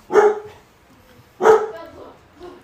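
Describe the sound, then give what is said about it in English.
Dogs barking: two loud, sharp, harmonic barks about a second apart, followed by a softer, shorter bark at the end, with no talking over them. “Here goes the werewolves.”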